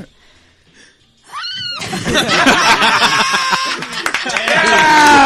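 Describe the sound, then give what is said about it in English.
A short, shrill whinny, apparently a person imitating a horse while attempting an animal impression before a crowd, rings out near the start, then a loud burst of crowd laughter and commotion fills the rest. “Where did a horse come from?”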